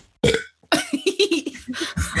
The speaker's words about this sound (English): Sorry, I have to burp.